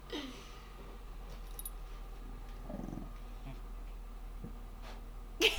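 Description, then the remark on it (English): A dog, Jet (Jetson Anders), aged nine and a half, growls softly and steadily in a low rumble, with a short breathy huff near the end. The sound is quiet overall and there is no talking. “Okay, we got a little, okay, a little growl, a little huff.”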